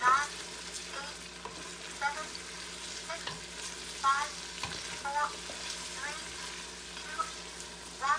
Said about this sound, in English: Start stirring your onions. You're still sauteing your tomato paste. So now it doesn't matter if you mix everything all up together. You're still sauteing your tomato paste.